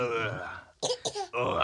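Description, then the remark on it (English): Two quick, deliberate-sounding coughs, fairly loud, land back to back in a short gap between stretches of voiced sound, like an exaggerated forced cough. “Now you're just fake coughing. That's a fake cough, 100%.”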